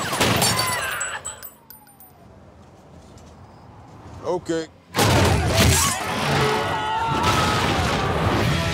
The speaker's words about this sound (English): Suspects on northbound 110. Heavy gunfire exchanged. We need backup.